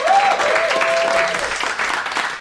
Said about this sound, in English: Ladies and gentlemen, could you please give a massive round of applause to the fabulous Kerry Godliman?